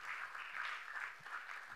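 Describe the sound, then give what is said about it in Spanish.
Steady applause during a church sermon, given in praise of God, a dense wash of many hands clapping at an even level throughout, with no voices over it. “Denle un aplauso a nuestro Señor Todopoderoso.”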